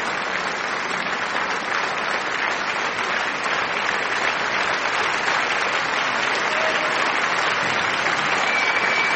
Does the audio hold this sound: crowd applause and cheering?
yes